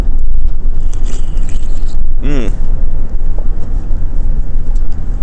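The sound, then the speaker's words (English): A single loud gulp of coffee, a brief gurgling swallow with a throaty pitched edge, rising out of a steady low rumbling background noise. The coffee is Blue Mountain Jamaican from a giant bulk bag bought at Costco. “I'm going to take a big old gulp of coffee in your ears, and then we'll get started.”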